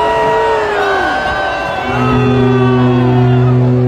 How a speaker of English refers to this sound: But as you heard, the crowd responded with boos.